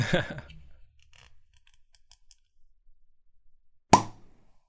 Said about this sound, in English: this champagne bottle has been in my fridge for a while. It's been waiting for an opportunity, for an occasion to get opened. So here we are. We've finally come to the time.